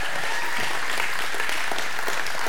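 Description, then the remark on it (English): A church audience at a morning service claps for God in a loud, sustained round of applause, dense overlapping hand claps forming a steady wash of noise with no pauses. “Well, if you're excited to be in God's house this morning, give God one more good round of applause today.”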